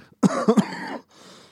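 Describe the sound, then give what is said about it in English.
A loud burst of coughing—three quick harsh hacks run together into a raspy, rattling exhale, then brief faint room noise. No speech. “It just was funny you coughed right after you said this that.”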